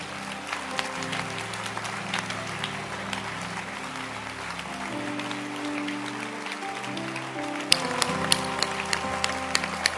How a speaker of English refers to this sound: I want us to stand to our feet and clap our hands for mothers and fathers.